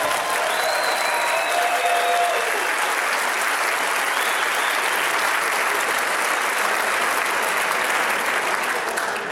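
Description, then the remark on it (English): A large audience breaks into loud, sustained applause, a dense wash of clapping that holds steady for several seconds with a few faint whistles or cheers near the start. “Or, if you applaud wildly right now, I won't read any of them.”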